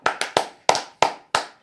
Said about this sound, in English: Yo, just take the applause.